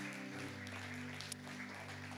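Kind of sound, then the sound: crowd, audience applauding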